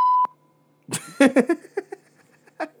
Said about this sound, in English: We got a censor button, just in case.